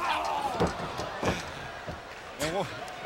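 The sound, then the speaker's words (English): A wrestler's somersault capo kick crashes into the ring corner, a series of heavy slams and thuds over a noisy arena crowd, with a brief shouted voice near the end. “that one was the somersault capo kick in the corner by Mysterio”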